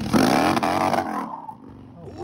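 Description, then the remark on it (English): A Harley motorcycle engine revs loudly out in the Arizona sun with a rough, throaty growl, its pitch climbing briefly before the roar cuts off after about a second and trails into a lower, fading rumble. “Harleys riding it.”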